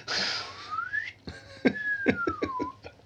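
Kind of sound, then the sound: sound effect, penny whistle being played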